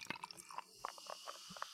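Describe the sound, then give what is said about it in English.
Brown creaming soda being poured into a glass, heard quiet as a soft stream with a crackle of small fizzing pops and bubbly ticks scattered throughout, with no one talking. “Okay, here we go. Pouring the brown one.”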